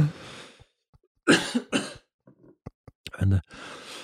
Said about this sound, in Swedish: Varför börjar jag hosta så här nu? Är det en... Det är ett sätt för min kropp att signalera att jag måste stoppa mig.